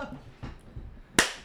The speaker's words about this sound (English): Synchronization clap.